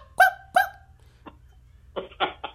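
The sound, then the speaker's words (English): A dog lets out two sharp barks in quick succession, then after a short pause gives a rougher, growly snarl in a few rasping bursts, with no one talking. “You get the growl dog.”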